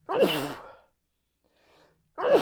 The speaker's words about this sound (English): Jeez. A good podcaster would probably edit that out. We won't. But I'm not going to do that. Yeah. It happens, man. People sneeze. People cough.